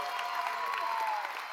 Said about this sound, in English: No, seriously, wait, that's a nice golf clap, but you clap bigger in a second.